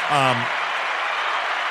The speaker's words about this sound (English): That deserves some of that right there. Another applause.